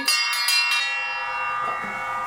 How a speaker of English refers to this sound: I quite like the bell idea.